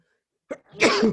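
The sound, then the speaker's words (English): A single loud adult sneeze into the arm beside a baby: a short sharp intake followed by a forceful, breathy burst that trails off, with no talking. “That baby just took your whole ass sneeze.”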